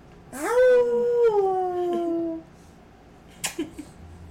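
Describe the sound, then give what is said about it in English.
A puppy lets out one long howl that slides steadily downward in pitch for about two seconds, followed after a pause by a few brief, sharp little sounds. “That's my puppy Scooby.”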